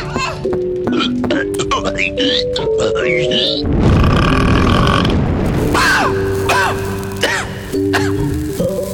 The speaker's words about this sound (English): Oh, you need to be burped already? Okay. All right, come on.